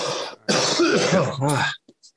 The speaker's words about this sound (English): Well, I'm about to cough now. Now that I fucking opened my damn mouth.